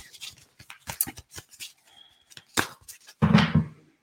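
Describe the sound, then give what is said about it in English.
A deck of cards being shuffled: a run of quick, crisp papery flicks and taps, ending in a louder, denser burst of riffling before it stops. “So I'm just going to do some light shuffling here, and then we're going to see what added messages want to come through.”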